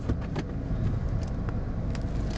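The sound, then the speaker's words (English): A car engine idles and rumbles low and steady, with a few faint clicks and knocks over the continuous drone, as the car slowly reverses out of a driveway. “Backing out of the driveway.”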